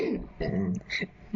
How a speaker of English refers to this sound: Now you clear your throat.